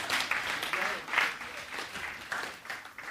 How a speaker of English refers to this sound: You've got to give him a round of applause and thank you.